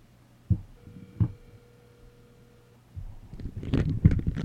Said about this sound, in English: Sorry, everybody, I'm moving a phone. I put the phone in a bowl. That's where all the noise was.